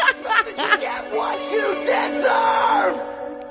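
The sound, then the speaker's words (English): A loud, drawn-out yell with a reverberating echo effect, repeated pitch swoops smearing into each other over a steady hum for a few seconds. “Ooh, an echo yell.”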